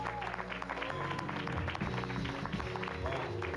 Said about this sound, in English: Give this orchestra a big round of applause.